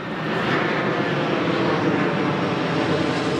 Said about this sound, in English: And therefore, you can't, as the plane flies over loudly.